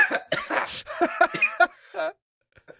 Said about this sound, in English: I just came for them coughs. I came for them coughs.